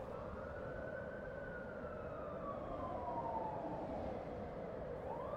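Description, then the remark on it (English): A distant wailing alarm siren rises and slowly falls in pitch over a steady low rumble of town traffic, with a second siren tone beginning to climb at the end. “There is faint shouting and the sound of distant alarms.”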